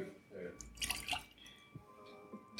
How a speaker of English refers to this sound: So we're all just rinsing our glasses out.